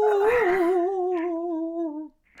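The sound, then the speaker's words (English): A voice imitates an eerie ghostly whale howl: one long, wavering moan held for about two seconds, loud, then cut off. A faint breathy noise follows. “Sounded like a spooky ghost whale.”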